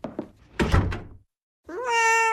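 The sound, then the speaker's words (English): A few dull thumps and a bump, then a brief pause before a cat lets out one loud, drawn-out meow, rising slightly and holding steady. “Move it, cat.”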